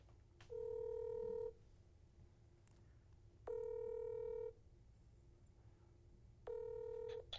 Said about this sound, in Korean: 그래서 오늘 그 코인리스 대표님한테 이런 앱을 도대체 어떤 아이디어로 만들었는지 한번 궁금해서 여쭤보려고 전화 연결을 한번 해보려고 합니다.